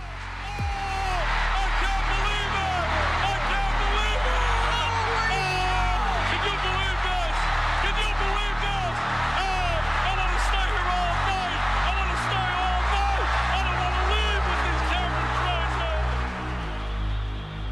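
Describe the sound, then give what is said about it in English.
A large stadium crowd roars and cheers continuously at high volume for competing athletes, a dense wall of overlapping voices that stays loud for the whole stretch with no pause. “And even though there appeared to be no teams, no countries or former events, the crowd continued to cheer. Now, even louder than before.”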